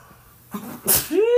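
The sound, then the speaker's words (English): A single loud sneeze: a quick inhale building up, then an explosive burst of breath, followed by a short voiced exclamation as it trails off. “I'm about to sneeze.”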